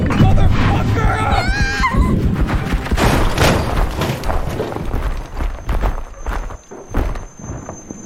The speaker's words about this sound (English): It's going to crash into the car!